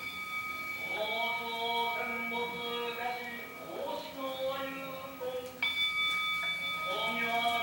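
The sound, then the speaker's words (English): A small hand bell rings out twice, its bright, sustained tone hanging over a man's voice chanting or singing a slow melodic line. A monk rings it at the end of each line of the song another monk is singing. “How about the little bell?”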